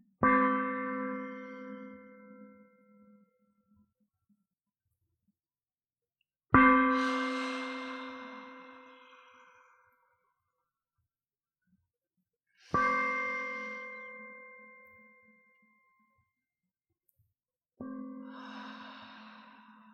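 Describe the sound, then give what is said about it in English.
A therapy gong is tapped four times at steady intervals during a breathing exercise, each strike ringing out clearly and fading slowly into near silence before the next. No one speaks. “So we tap the gong to breathe in, and we wait for the sound to stop.”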